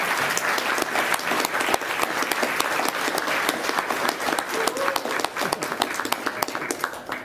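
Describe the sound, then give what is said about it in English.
An audience breaks into sustained applause for high school students who provided an evening of entertainment to raise funds for a medical initiative, many hands clapping in a dense, steady patter that stays fairly loud throughout, with no voices standing out. “Let's give a round of applause to these young people who are models of kindness, caring, and positive action.”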